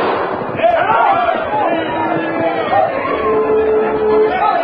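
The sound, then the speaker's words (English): A large crowd of spectators cheers and shouts steadily at the start of a horse race as the big black horse Diablo pulls well out ahead at the first turn, a loud, dense roar of many voices with individual yells rising and falling throughout, never letting up. “The track curved in a large circle, and the spectators cheered madly as the big black horse Diablo pulled well out ahead at the first turn.”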